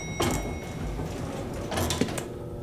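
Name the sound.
elevator door closing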